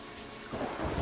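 A rumble of thunder from a storm swells partway through, rolling low and heavy over a steady wash of rain, with no voices present.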